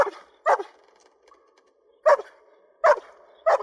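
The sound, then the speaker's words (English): A dog in a film scene fear-barks in sharp, high-pitched bursts, one at the start and then spaced pairs, sounding frantic, desperate and fearful, with a faint whine in the gaps between barks. “And it impressed me, and I recorded some of it, because this is fear barking, and it really got me.”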